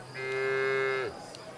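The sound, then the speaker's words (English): A single cow moos once, a loud, sustained low bellow lasting about a second that drops off at the end, with no talking. “And speaking of the cows, Gihanga also claimed a special relationship with this symbol, being recognized as Gihanga is the origin of royal cows.”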